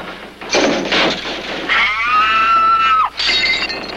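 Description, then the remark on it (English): A loud crash of breaking glass gives way to the stock Bartlett scream sound effect, a sustained, piercing scream that slides downward and cuts off, followed by another burst of clattering debris. “What was that? It's the Bartlett scream.”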